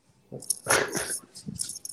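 A worked-up dog does zoomies around the house, with bursts of scuffling, scrabbling movement mixed with short whiny yips, in an irregular, excited rhythm and no one talking.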